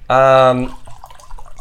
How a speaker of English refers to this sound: Let's pour another glass for this. Yeah, I'm going to need this.